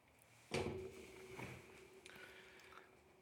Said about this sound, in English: His rheumy eyes inspected the busted lock. Trembling, he pushed the creaking door open, and Pepino rushed in, Pepino being his dog.